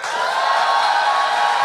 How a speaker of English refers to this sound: I'd like to actually just do a little just sort of like poll at the beginning of the show tonight. How many in the audience tonight, by applause, are lifelong Floridians?